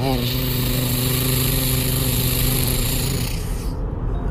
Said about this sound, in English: And so they got into their monster trucks and rode up the mountain.